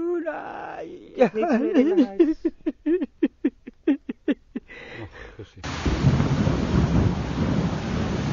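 Strained, rhythmic vocal sounds give way abruptly to a loud, steady roar of a heavy rain and wind storm in Bangladesh, with a deep rumble beneath the downpour for the final few seconds.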